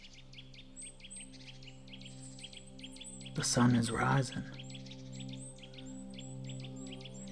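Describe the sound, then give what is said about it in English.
Birds chirp steadily at sunrise in quick, repeated high tweets over a low continuous hum. A person speaks briefly in the middle, and the birdsong carries on around the voice. “Birds.”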